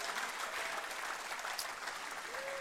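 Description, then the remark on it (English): An audience at the King's Church claps together for the King in a steady, dense wash of applause that holds at an even level throughout, with no voices standing out above it. “Come on, let's give the King a big clap in this house right here.”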